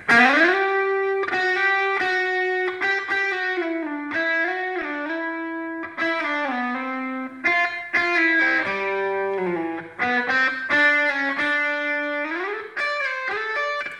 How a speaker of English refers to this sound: If you play with a slide, what you're doing is instead of shortening the length of string from that fret where it only vibrates from here to the end, picked up by the pickup